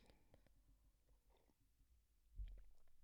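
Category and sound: food or drink, sipping black coffee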